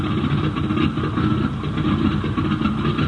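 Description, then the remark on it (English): A newly installed airplane engine runs steadily, a loud, continuous low rumble with a throbbing mechanical drone and no pauses, heard on its own without voices. “The ship had a new engine, airworthy wings, and foolproof controls.”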